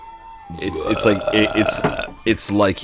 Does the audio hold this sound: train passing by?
no